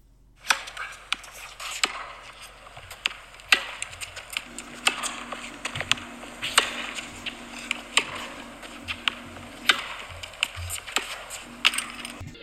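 Irregular soft thuds and clattering knocks tumble over a steady low mechanical hum, like tennis balls bouncing around inside a spinning clothes dryer drum. No one speaks.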